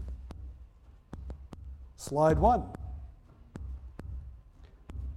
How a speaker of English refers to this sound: They've got the headphones on. The headphones are amplifying their heartbeat.